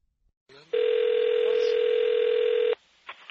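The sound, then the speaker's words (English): A phone line sounds a single loud, steady ringing tone for about two seconds as a call is placed to a caller in Minneapolis, right after a brief click of connection noise, with faint line noise following it. No one speaks. “But I actually want to bring this caller into the conversation, because I have some follow-up questions, so we're going to give him a buzz and get him on the phone.”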